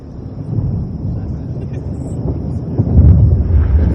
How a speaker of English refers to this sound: We begin to hear the sound of thunder before the cut.